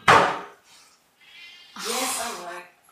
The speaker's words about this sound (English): MVP would go to the cat that's about to walk in and make a lot of noise. I might just pick him up because it'll be that he's quiet.